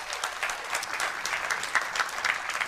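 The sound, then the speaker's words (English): A church audience applauds steadily, a dense, sustained patter of many hands clapping at once, bright and fairly loud throughout with no voices standing out, giving a round of applause to those who participated in an overnight event with families. “So give them a big hand, a round of applause.”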